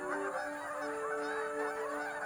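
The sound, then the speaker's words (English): A flock of geese heading north to Canada honking steadily from overhead, their overlapping calls continuous, with no talking. “Hey, listen. Geese headed north to Canada.”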